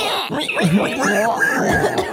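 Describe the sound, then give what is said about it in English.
A person tries to imitate a pig, making a strained, grunting snort that wobbles in pitch and breaks into something like a cough or snicker, lasting about two seconds. “I can't do a pig sound.”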